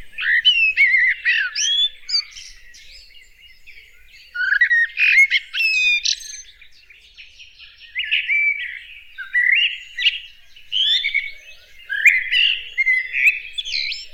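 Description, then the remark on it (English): A blackbird sings alone in varied, flowing phrases, bursts of fluty whistles and warbles separated by brief pauses, clear with no voices present. “Blackbird is mellifluous, flows like honey. Like a jazz singer, it free flows, with notes varied and musical.”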